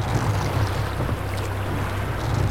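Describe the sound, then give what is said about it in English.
Charon's rowboat moves steadily through the dark water of a river, with continuous low sloshing and lapping against the hull and a faint breezy rush over it. No voices are heard. “Ruddy-faced Charon cuts through the dark water on his rowboat.”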